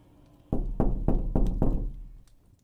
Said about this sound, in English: I woke up to heavy knocks on my door around sunrise. It was the woodsman.